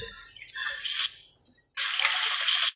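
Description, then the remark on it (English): Rain falling on an RV, a dense, hissing patter that swells and fades, drops out briefly, then returns as a steady, bright wash of noise. No one speaks. “So that's my rain in the background. It's because I live in an RV full time.”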